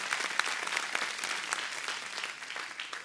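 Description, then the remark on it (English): An audience gives God a hand clap, a dense, sustained burst of applause, many hands overlapping with no clear rhythm, steady and fairly loud for a few seconds with no talking. “Give God a hand clap.”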